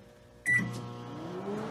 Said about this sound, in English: Get this cheese melted. You heard the man. Let's see. Let's get a good look at the inside of that microwave. Come back at you when it's done.